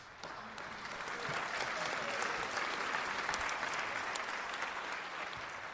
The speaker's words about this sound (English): The crowd applauded, but did nothing more.